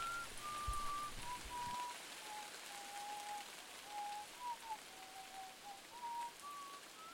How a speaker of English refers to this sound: … whistles a family tune.